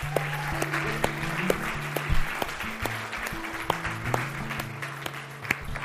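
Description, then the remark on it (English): Steady audience applause for a youth team after a toy drive, a dense wash of many hands clapping at once, sustained and fairly loud for several seconds with a low murmur of voices underneath. “So can we just give them a round of applause?”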